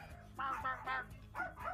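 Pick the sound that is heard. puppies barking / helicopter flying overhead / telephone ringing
puppies barking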